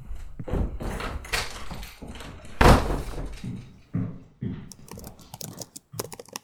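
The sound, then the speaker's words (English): A door is handled, with knocks and rattles building to one loud bang partway through, then a run of quick, sharp clicks and light taps as it swings open to let visiting men in. “Should I let them in? Yes. Right, yes.”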